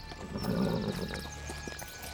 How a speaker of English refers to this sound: They rose and mounted their horses and set off in a slow trot until the horses had warmed in the chill of the morning.